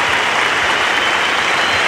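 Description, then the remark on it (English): A large cricket crowd rising in a standing ovation for a batsman's 182 in his last Test match innings, dense, sustained clapping and cheering filling the space, loud and steady throughout with no individual voices standing out. “And the whole crowd rises now to Greg Chappell.”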